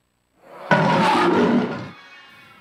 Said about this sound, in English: The rulers were thrown in. The lions roared.